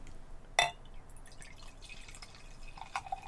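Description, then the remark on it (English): A sharp click as the top is popped opens the sequence, then crystal clear, light gold beer pours into a glass with soft trickling, fizzing sounds. A brief splash near the end, and no one speaks. “But pop the top. My top. And the pour. There's the cap.”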